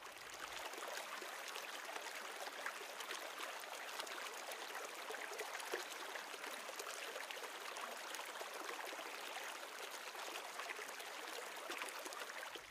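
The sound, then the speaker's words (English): A river flows steadily, a continuous bright rush and babble of moving water with no pauses, even in loudness throughout. “He reached the river.”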